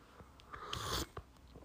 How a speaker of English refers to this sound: It's boiling hot and it's black coffee, right? So I have to sip it like that.